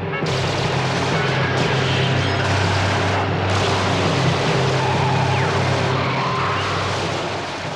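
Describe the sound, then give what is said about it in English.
Loud, dense bursts of machine gun fire rattle over the steady roar of a speeding car engine as machine guns pepper the French presidential car with over 100 bullets on the Avenue de la Libération, France, on the evening of August 22, 1962; the shooting and engine noise blend into one sustained, chaotic din. “Machine guns peppered the car with over 100 bullets.”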